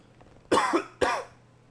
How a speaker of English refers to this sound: Hold on, let me cough.